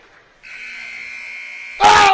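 A long, steady electronic buzzer blares for over a second at halftime of a Cookeville Cavaliers basketball game against the Panthers, as a shot from behind the half-court line goes in, then a sudden burst of crowd roar and cheering cuts in loudly at the end.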